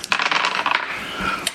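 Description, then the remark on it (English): Two six-sided dice (D6 and D6) clatter and tumble across a hard surface in a quick burst of bright, overlapping clicks, settling after a moment with one last tap. No voices. “Roll me. D6 and D6, right?”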